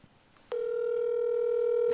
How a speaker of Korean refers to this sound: 우리 이거 벨소리만 나가.